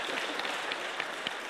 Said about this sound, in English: And I want you to show your love and support and encouragement of her decision to unite with this family of faith by letting it be known by saying amen. Amen and applause.